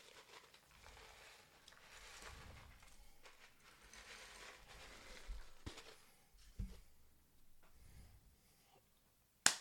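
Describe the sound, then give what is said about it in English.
Ice cubes rattle and clink into mint julep cocktail glasses to top them off, in a low, uneven patter with a few sharper knocks and a loud closing clack, no voices present. “Let's go ahead and put a little bit more ice in these just to top them off.”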